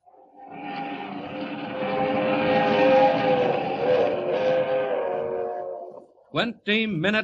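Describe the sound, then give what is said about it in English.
The Silver Clipper, the West Coast Railroad's streamliner, roars past loudly for several seconds through the dark at 80 miles an hour up the Rockies, its rumble layered with a sustained, chord-like horn tone that swells and fades, before a voice starts speaking near the end. “The crack streamliner of the West Coast Railroad rushes through the dark at 80 miles an hour, destined for a watery grave at the bottom of Schooner Canyon Lake.”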